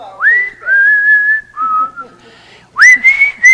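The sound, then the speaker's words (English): A clear whistled melody with sliding, sustained notes rising and holding, played in a few phrases with brief pauses between them, fairly loud. “Yeah, you come back, God's whistling your song.”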